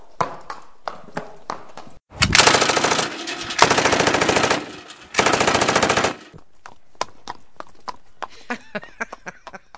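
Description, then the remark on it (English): A joke "Amish drive-by shooting": steady clip-clop of horse hooves gives way to loud, sustained bursts of rapid automatic gunfire lasting about four seconds, then the hoofbeats continue alone, quickening toward the end. “It's an Amish drive-by shooting.”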